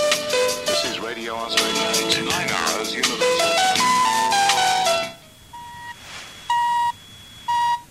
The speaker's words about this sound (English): Here's an audio clip of Radio Fiji 3 on 104 FM recorded in 1993, when they were taking the top of the hour time signal from Radio Australia. If you listen carefully, you can just hear the Radio Australia ID.